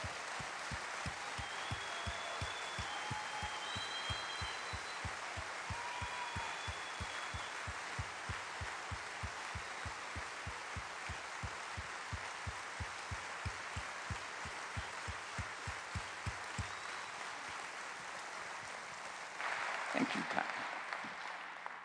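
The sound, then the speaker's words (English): A crowd claps steadily for about twenty seconds to honor and thank veterans, a dense, even patter of many hands, thinning out near the end. “Let's give them a hand of thank you.”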